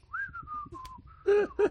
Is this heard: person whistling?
yes